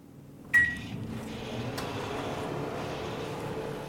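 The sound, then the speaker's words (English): A microwave oven heating cauliflower for about 2 to 3 minutes to soften it beeps once as it starts, then settles into a steady low hum and whirring drone that continues evenly, moderately loud, with no talking. “And we're going to just heat that in the microwave for about 2 to 3 minutes, depending on the heat of your microwave, because we want the cauliflower to soften.”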